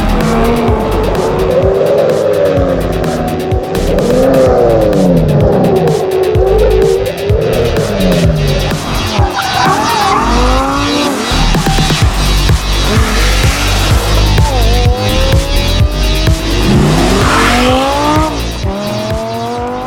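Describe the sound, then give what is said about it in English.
A Lamborghini Gallardo sports car engine revs hard and loud, its pitch sweeping up and down through gear changes, with sharp tire squeals cutting in repeatedly throughout. “Every Lamborghini has his own character and temperament. The sound we generate with our engine is so special, so different.”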